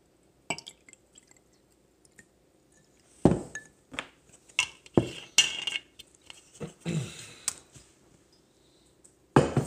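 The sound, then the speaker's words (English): Re-oaked Evan Williams whiskey is poured into a glass, amid sharp clinks and taps of glassware being handled, with a few brief splashy bursts and quiet pauses between them; no one speaks. “But first off, let's make sure we get our drink. This is some re-oaked Evan Williams.”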